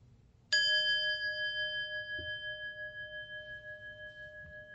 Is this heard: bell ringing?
yes